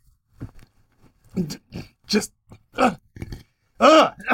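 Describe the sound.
A person coughs and hacks up phlegm several times in rough, uneven bursts, ending in a loud, harsh throat-clearing cough, with a brief spoken word at the start.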